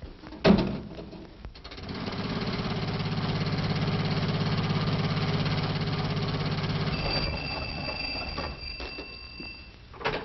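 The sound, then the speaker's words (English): A click, then a car engine turns over and settles into a steady, loud rumbling idle for several seconds before easing down, with no one speaking. “No, I'll take the jitney into town and get my car.”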